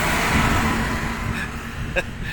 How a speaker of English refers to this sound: I'll wait for this truck to go past.